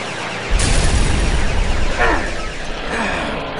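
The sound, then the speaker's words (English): A loud, rumbling sci-fi explosion bursts in after a brief silence, with a heavy low roar that sustains while a descending, zapping ray-weapon sweep, fired by regrouping attackers, cuts through midway, then the blast slowly trails off. “They're regrouping and firing some sort of ray.”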